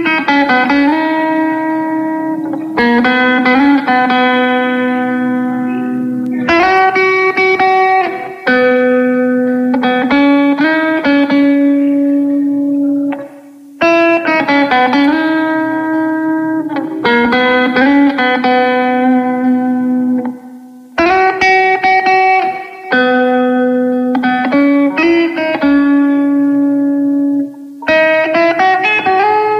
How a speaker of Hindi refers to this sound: ये है एक म्यूजिक कंपोजर और इन्होंने अपने हाथों में लिए गिटार और जो फुल पावर है संडे की शाम को और भी ब्यूटीफुल कर देगा ये म्यूजिक पीस। सुनिए जरा।